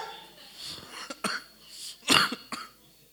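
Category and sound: human body sound, cough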